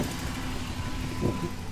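A pickup truck's engine idles with a steady low rumble in a parking lot, broken briefly by a soft muffled bump near the end as people hop back into the truck. No one speaks.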